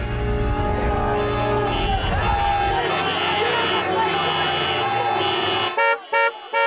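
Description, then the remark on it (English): A chorus of car horns blares loudly and continuously in a stalled traffic jam over a low traffic rumble, several overlapping, before breaking into a few short, sharp toots at the end. “It's useless. This traffic isn't moving.”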